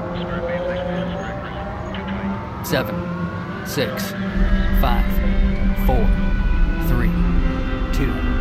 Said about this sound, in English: 7, 6, 5, 4, 3, 2, 1, 0. Boost ignition. All engines running. And liftoff. We have liftoff. 48 minutes past the hour. Liftoff on USS Hope.